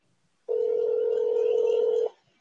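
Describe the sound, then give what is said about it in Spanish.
An outgoing phone call's ringing tone: one steady, mid-pitched electronic buzz lasting about a second and a half, loud and clear, with quiet background before and after and no voices. “Déjame dar un último try a Memo, a ver si contesta el condenado teléfono, el cabrón este.”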